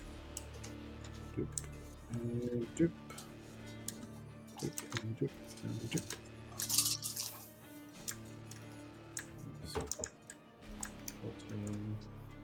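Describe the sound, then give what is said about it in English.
Rapid, irregular keyboard typing clicks patter along throughout at low volume, with faint voices murmuring in the background at moments. “Whose keyboard is that?”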